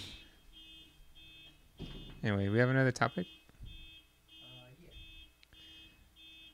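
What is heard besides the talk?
car horn honking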